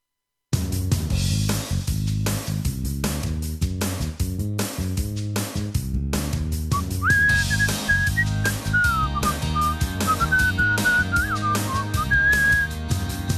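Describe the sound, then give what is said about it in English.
Someone whistles a wavering melody over an upbeat instrumental track with steady drums; the whistling enters about halfway through and carries on, clear, to the end. “Not going to get in trouble with ASCAP, am I, for whistling?”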